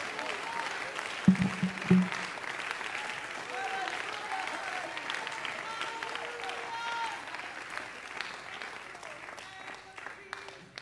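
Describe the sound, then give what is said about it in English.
An audience at a Sunday morning church service claps their hands and lifts their voices in praise of God, a dense wash of applause and overlapping voices, a few sharp louder bursts near the start before it gradually eases off. “Come on, if you want that to be you, you ought to clap your hands, lift your voice, and praise Him.”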